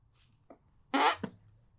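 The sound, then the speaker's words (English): A short, loud, raspy fart sound, with a softer puff just before it and a brief trailing burst right after, standing out against near-silence with no voices. “We have discovered through our watch through of Avatar the Last Airbender, my second, …'s first, that he is a fart bender.”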